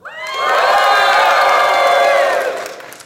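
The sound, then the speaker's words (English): A live audience at Phoenix Comic Con cheers and whoops loudly, many high voices blending into a sustained roar that swells quickly, holds for a few seconds, then tapers off. No speech is heard. “And we are very thankful for the crowd here in the audience.”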